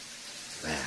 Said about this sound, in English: can you do the shower for him?